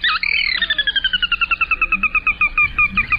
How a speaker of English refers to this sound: No, that's not a speeded-up recording of a horse whinny. It's actually a bird, a member of the Rallidae family, which includes gallinules, moorhens, coots, and rails.